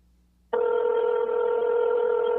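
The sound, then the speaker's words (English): A telephone calling a number late at night: after a brief quiet moment, a loud, steady electronic phone tone switches on abruptly and holds unbroken to the end, with no voices. “They probably look at the phone like, who the hell is this? Who's calling me at this hour?”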